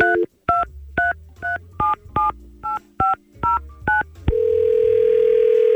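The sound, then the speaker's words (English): A quick, even run of about ten touch-tone beeps as a phone number is dialed, followed by a steady, continuous tone that holds until the end. No voices are heard. “We're gonna try and get him on the phone. Let's give him a call.”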